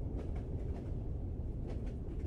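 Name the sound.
train riding on rails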